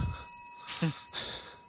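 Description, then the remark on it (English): A small handheld bell, rung to buzz in during a video game quiz, gives two quick bright dings whose clear metallic ring hangs steadily underneath, fairly quiet overall. “I think I heard an actual bell to ring in with.”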